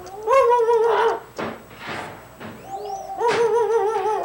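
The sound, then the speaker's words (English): A parrot mimics a barking dog: two long, wavering, strongly pitched calls frame a few short, harsher, breathy bark-like bursts. The calls are loud, with no one talking. “Yes, that's a bird imitating a barking dog.”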